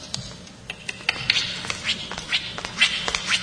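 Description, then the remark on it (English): A real parrot does its walk: a quick, uneven run of soft heel-and-toe taps like footsteps, with faint rustling and bright chirpy squawks mixed in, with no talking. “is one where the parrot walks, and you can actually hear, I think, the sound of the heel hitting the floor, and the toe, and the sound of fabric rustling on against the shoe, and it is a real parrot.”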